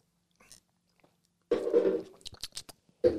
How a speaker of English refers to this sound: It's heaps unsettling because I can hear you swallow.